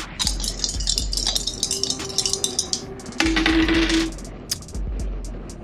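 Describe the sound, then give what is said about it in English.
Dice rattle and clatter across a hard table in a quick burst of small clicks, with a soft tonal hum partway through, then trailing scattered taps as they settle. “Well, on the dice, it's a 5. Plus 1 ongoing, plus 1 finesse, 7.”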